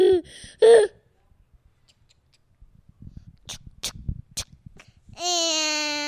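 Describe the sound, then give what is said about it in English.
A child's voice imitates a train: short breathy chugging bursts, then a long, steady, high-pitched 'woo' like a whistle, held loudly for about a second at the end. “What sound does the train make?”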